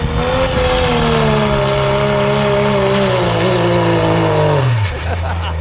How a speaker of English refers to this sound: And here comes the sled pull truck again. We'll listen to it.